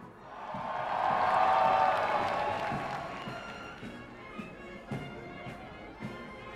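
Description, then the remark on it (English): A large crowd of citizens of the Fire Nation, Earth Kingdom and Water Tribes, greeting Zuko, bursts into dense applause with some cheering, swelling loudly for a couple of seconds before thinning out into scattered individual claps. “Immediately, there was thunderous applause from the citizens of the Fire Nation, Earth Kingdom, and Water Tribes.”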